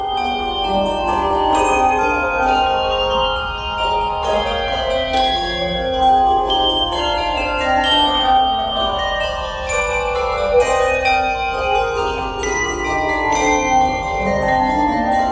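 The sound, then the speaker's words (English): A handbell ensemble plays a Bach passacaglia, dense overlapping bell tones ringing in steady rhythmic strikes with long shimmering sustain, loud for the whole stretch with no talking. “And you can hear in this performance by …, which is a group that I direct, some of the real technical trickery that happens in this piece.”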